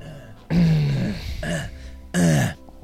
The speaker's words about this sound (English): Oh my god, I'm so gassy. I'm just burping and burping.